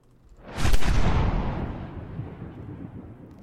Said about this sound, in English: After a few minutes, I hear the cannon, and I know that Clove has died.